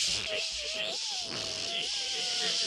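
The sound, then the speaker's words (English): A voice imitates the noise a car is making from its back wheels with a steady, wavering whine held for nearly three seconds, its pitch dipping and rising slightly, with a buzzy, insect-like edge over a hissy background. “I came in this morning and my car is making this sound right now. It goes like this.”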